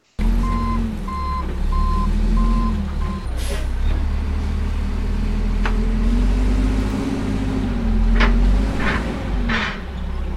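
A truck's reversing alarm beeps steadily in a rapid series of short tones over a loud, rumbling diesel engine, then stops as the engine keeps idling with a few air-brake hisses and clanks.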